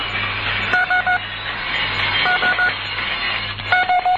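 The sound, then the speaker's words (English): Morse code for the letter S (Sierra) sent three times in a Morse code practice exercise: sets of three short, clipped beeps separated by pauses, clear above a steady background hiss like a moving train. “Dividit, Sierra.”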